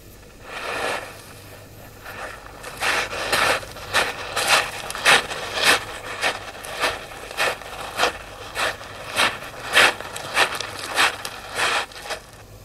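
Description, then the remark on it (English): Crunching footsteps in a steady walking rhythm, about a dozen and a half firm steps on a gritty surface, starting after a brief scuff and continuing evenly to the end with no talking. “Footsteps start again now in a moment.”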